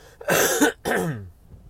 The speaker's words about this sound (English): Excuse me, I'm going to cough.